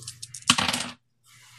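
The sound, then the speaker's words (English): Dice, including one hunger die, clatter across a hard tabletop: a few light clicks, then a quick burst of rattling that settles within a second, fairly crisp, with no voices. “with one hunger dice. So there we go.”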